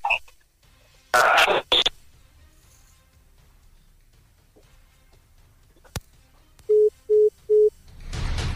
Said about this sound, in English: Apologies, really, that the phone lines are not that entirely cooperative this morning. I don't know whether I would get back to the calls. Not the smoothest connection this morning.